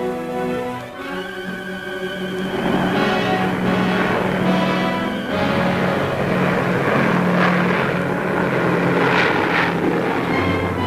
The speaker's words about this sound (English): Overhead, American planes patrol.